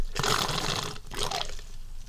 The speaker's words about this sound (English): Just for the record, that was a straw, not me. I don't gurgle my coffee.